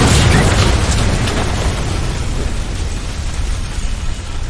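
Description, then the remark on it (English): A plane crash sound effect: a loud crash and explosion bursts at the start as a plane goes down into a forest canopy, then fades into a long, roaring rumble of debris and noise that stays heavy in the low end for several seconds. “But you did succeed on your piloting row, so you're able to at least get the plane to level out a little bit, so it's not a complete dive into the canopy, and you guys crash.”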